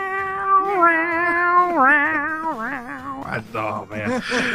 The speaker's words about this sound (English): So it definitely had the cat noises. But you got to give it some credit though. It's you got two cats harmonizing with each other in that song. Meow meow meow meow.